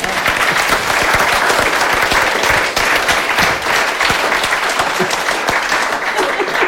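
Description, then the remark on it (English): Sustained audience applause for both participants of a debate on living forever versus dying, loud and steady, a dense wash of many hands clapping at once for several seconds with no voices standing out. “Ladies and gentlemen, give them both a round of applause.”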